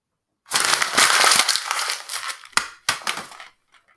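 Loud crinkling of a piece of paper being scrunched into a ball for about two seconds, followed by two quick papery thumps as it is thrown against a wall. No one speaks.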